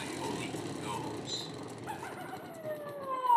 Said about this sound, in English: That fucking coyote, man.